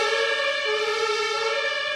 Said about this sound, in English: That was a loud one. That kind of actually made me jump, that siren.